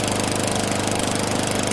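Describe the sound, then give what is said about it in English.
A lawn mower engine runs steadily and loudly as James Sonny Buchanan Jr. mows the grass in the Aspen Hill area of Montgomery County, Maryland, on October 3rd: a constant droning rattle with a buzzing motor hum and no voices. “is mowing the grass.”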